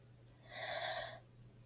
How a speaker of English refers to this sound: One thing that I've been recommended for personal use is to focus on my breathing. To have a deep breath in.